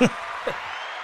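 A steady wash of clapping runs through the whole moment, a dense, even patter of many hands at moderate volume, with a brief vocal sound at the start and another midway.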